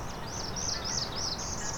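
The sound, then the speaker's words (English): A Blackburnian warbler sings a string of thin, very high, wiry notes in quick repeated phrases, very high-pitched at the end, over a steady rushing background noise. “He's a black burning warbler, very high pitched at the end.”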